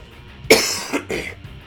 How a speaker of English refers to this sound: Excuse me, once again, a good time to wrap the show up. I'm beginning to have a little coughing fit here.